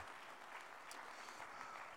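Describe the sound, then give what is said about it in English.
A church audience claps their hands unto the Lord during a sermon in a dense, steady wash of applause, many overlapping claps blending into a continuous crackle at an even loudness throughout, with no voices standing out. “Come on, somebody clap your hands unto the Lord today.”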